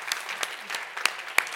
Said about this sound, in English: Let's give all of our guests a round of applause.